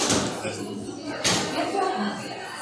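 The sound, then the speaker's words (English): A door swings shut with a single solid thud partway through while muffled voices murmur in the background. “So, can you just close the door?”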